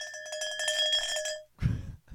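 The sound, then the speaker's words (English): A metallic bell is struck rapidly over and over for about a second and a half, a bright ringing rattle, then cuts off into a short low thump and rustle. “Fast belling.”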